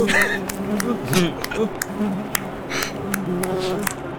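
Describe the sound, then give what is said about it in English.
A voice makes a wavering, buzzing hum in imitation of a bee, sustained for several seconds with a fluttering, droning quality and occasional sharp clicks. “Watch out for the bee.”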